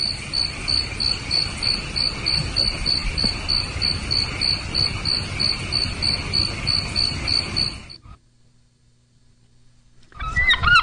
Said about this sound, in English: Then come evening crickets.